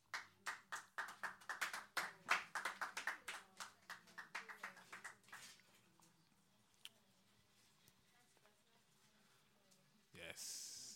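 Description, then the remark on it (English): A group claps in a quick, steady rhythm for about five seconds after a prayer, in thanks for what the Lord has done; then the applause fades into quiet murmuring before a brief burst of noise at the end. “Yeah, it's worth a clap.”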